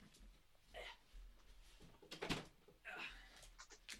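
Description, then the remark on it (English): A door is pushed shut with a single firm thud midway through, preceded and followed by soft shuffling and handling noises amid otherwise quiet. “Sorry, I just wanted to close that door.”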